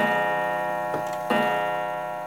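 A pair of crisp clock ticks, close together, rise over a steady, sustained tonal drone that hums underneath throughout. No voices are present.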